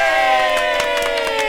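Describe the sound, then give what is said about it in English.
A brief, loud burst of cheering, with several voices shouting together in one sustained whoop that fills the whole moment before fading. “Or just one cheer.”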